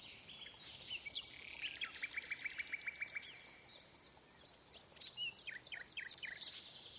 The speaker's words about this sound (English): The emperor said the living nightingale ought to sing something.